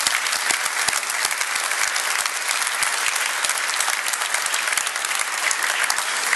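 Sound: round of applause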